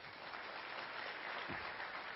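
An audience applauds a volunteer who has come up to the front to help, a dense, steady wash of many hands clapping at once that holds at an even level for the whole two seconds without a break.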